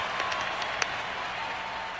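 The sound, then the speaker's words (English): A steady wash of applause from a small group, dense crackly clapping at an even level for the full two seconds, with a few sharper individual claps standing out early on. “Yeah, let's give you a round of applause for that.”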